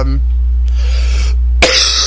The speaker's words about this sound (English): As you can see, I'm still kind of coughing, by the way. So I'm still kind of sick, but I'll be okay.